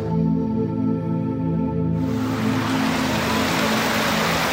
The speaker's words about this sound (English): You might be able to hear that in the Costa Rican area of the rainforest biome. There's this mini little waterfall, this little stream running through it all. Listen.